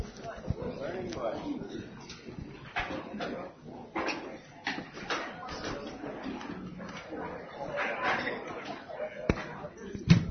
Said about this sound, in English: Okay, I gotta ask you to help. Along that wall there, let's fold up these chairs and stack them up so we can kind of wander around out here.